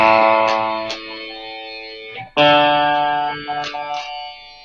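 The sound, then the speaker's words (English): An electric guitar rings out sustained, distorted chords, then drops out briefly midway before a fresh chord swells back in with a shifted tone as each string is switched between a distorted amp and a clean amp; loud, with no talking. “And so what happens is when you turn this, it'll turn it this amp into that amp, and it's each string. So you can hear how it switches from one amp to the other.”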